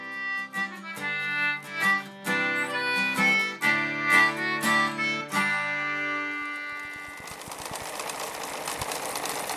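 A tonal, clicking mechanical passage gives way to a sewing machine whirring steadily with rapid, regular ticking, fairly loud, no voices present.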